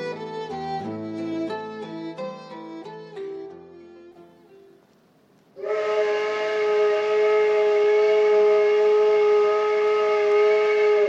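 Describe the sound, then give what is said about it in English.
Boat and train whistles and horns, recorded for the 1972 Vancouver Soundscape, sound in a shifting series of overlapping tones for several seconds, then one loud, steady horn blast holds until the end, with no talking. “Before we leave you, we'd like to blow our own whistle a bit by playing for you some of the music that boat captains and train engineers make when they blow their whistles and toot their horns.”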